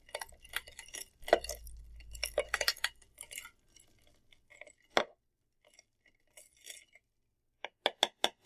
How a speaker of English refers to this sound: And you want to stir it. I like to use the little twist on there that's built into the spoon. Until you get a little bit of frost to appear on the outside.